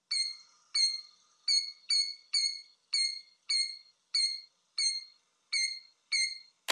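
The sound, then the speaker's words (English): A killdeer calls over and over, about eleven sharp, high, piercing notes at a steady pace, clear with nothing else behind them. “If you guys killed deer, you're correct.”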